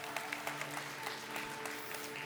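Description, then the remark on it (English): An audience claps steadily for the teachers in the house for a couple of seconds, a dense patter of many hands at moderate volume over a low constant hum, with no voices. “Come on, clap your hands for the teachers in the house.”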